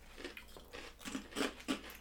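chewing crunchy potato chips

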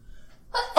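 sneeze

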